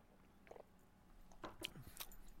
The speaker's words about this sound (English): So I'm going to have a sip of this, and it looks really good to me, and I feel kind of thirsty right now, so this comes at a good time. So here we go.